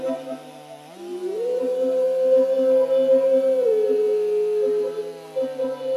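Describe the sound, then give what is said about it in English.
A blood badger's long, drawn-out howl at the moon rises, holds a wavering pitch for several seconds, then slides lower, over a steady, low droning tone underneath. “As I mentioned earlier, when you hear the blood badger howl at the moon, that's a reminder to focus on your breathing.”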